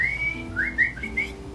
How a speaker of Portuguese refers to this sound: Enquanto o Yondu solta o seu famoso assobio pra matar, né?